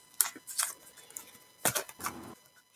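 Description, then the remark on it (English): Quick bursts of crisp, papery riffling and flicking as a deck of dragon oracle cards is shuffled to pull a card for 2024, with sharp clicks and a longer buzzing ripple near the end, fairly quiet with no talking. “I'm just going to shuffle my cards, call my dragons, and ask them to tell us for 2024, what message do you want us to receive?”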